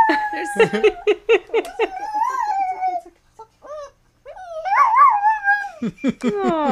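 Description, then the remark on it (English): A dog howls in imitation of sirens he hears, sustained wavering tones that rise and fall in pitch, broken up by short yips and whimpers, with a brief quiet gap midway. “Sometimes he hears the sirens, and then he just is a siren.”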